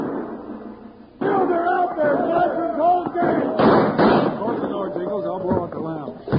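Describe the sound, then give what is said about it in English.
In a Wild Bill Hickok story, after a quiet start, a sudden loud burst of gunfire erupts as Jingles opens the door to cross to the cafe, and keeps going in rapid, sharp cracks, mixed with shouting voices and a clamor of noise. “Just as Jingles opened the door to start across to the cafe, a burst of gunfire stopped him short.”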